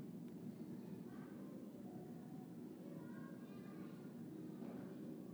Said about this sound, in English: You start to hear those kids playing. Airplane. Things we wouldn't have noticed, right?